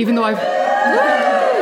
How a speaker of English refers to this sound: But also joining me, I have to flag this up, we have a live studio audience. So we can have a murmur from the crowd.